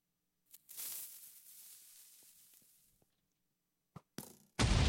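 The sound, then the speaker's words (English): Video game TNT cannon blasts, fired too early and landing under the glass: a sharp pop launches into a long, hissing roar that slowly fades, followed by a quick crack, another short burst, and a loud, harsh explosion cut off at the end. “Oh, fired too early. At least I got it under the glass.”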